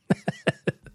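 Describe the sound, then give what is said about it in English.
A rapid run of five short, explosive sneezes in about a second, evenly spaced, the last one softer than the rest, with no talking. “The sneezes are back now.”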